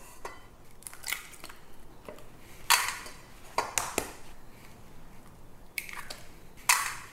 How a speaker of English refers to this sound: So first off, I'm going to crack 2 eggs into a bowl.